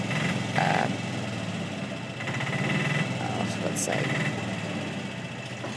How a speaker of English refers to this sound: which, like, sorry, this is a really loud tuk-tuk that's just pulled up.